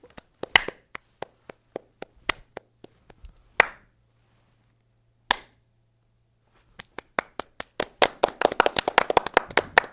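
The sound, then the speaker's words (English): People clap their hands in sharp, scattered claps, with a few isolated claps and pauses in between, then a rapid, denser burst of clapping building toward the end. No talking. “let's clap.”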